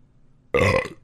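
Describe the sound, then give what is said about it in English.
A single loud burp erupts abruptly after a moment of near silence, after drinking a strawberry Topo Chico seltzer, lasting about half a second with a rough, gurgling low rumble. “Patented burp.”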